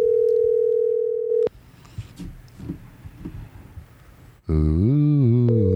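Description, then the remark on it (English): A steady electronic ringing tone of an outgoing phone call sounds for about a second and a half, then the line goes quiet with faint clicks and murmurs before a loud, wavering tone cuts in. “We're ringing. We can hear it ringing.”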